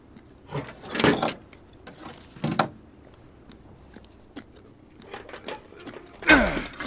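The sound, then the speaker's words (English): A large shipping door is worked open, with a few loud metallic rattling bursts separated by quieter mechanical clicks and scrapes, with no one speaking. “There's a shipping door over here.”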